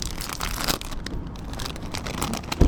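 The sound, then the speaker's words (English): Continuous crinkling and crackling of a crisp packet being torn open, steady for a few seconds and ending in a sharper rip, with no voices. “The packaging is slightly underwhelming, but you don't want a paper packaging.”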